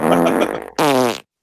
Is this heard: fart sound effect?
yes